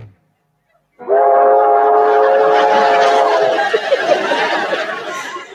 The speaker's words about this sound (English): It's so cute when Gonzo blows his horn. He insists it's going to be terrific, and then he does the train whistle sound, and everybody around him just like nods approvingly, like, yes, good job.